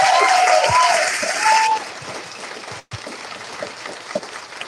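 A crowd claps enthusiastically for a local restaurant owner and his wife and family, with a few sharp whistles early on; the applause is loud at first, then settles into a steadier, softer patter that continues to the end.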